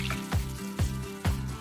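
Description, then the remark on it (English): Half a box of beef stock glugs into a stew pot in three evenly spaced gulps, each with a short falling gurgle, over a steady low kitchen hum and faint sizzling. No one speaks. “Half a box of this beef stock. I'm gonna also add a cup of water.”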